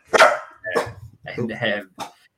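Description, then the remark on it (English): A dog barks several times: two sharp barks, then a longer, more drawn-out volley and one final bark, each loud and separated by brief pauses. “The dog doesn't agree with me.”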